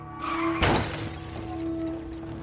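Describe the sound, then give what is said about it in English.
A car crashes into a tree with one sudden, loud impact and a burst of shattering as the airbags deploy, cutting through a steady low engine hum that keeps droning afterward. No one speaks. “I screamed and turned the car towards a tree.”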